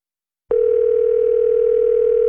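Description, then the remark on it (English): A steady telephone dial tone begins abruptly after a brief silence as Rock 107 radio places a call to a contest winner, holding at an even, loud level, a continuous electronic hum with no voices. “We're going to get him on the phone right now and tell him he won.”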